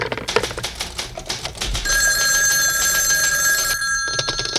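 An old-fashioned telephone bell rings: a rapid metallic clattering burst, then a loud, sustained shrill ringing tone that holds steady for a couple of seconds. No one speaks.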